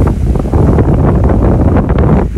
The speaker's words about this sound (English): And there is a little bit of wind.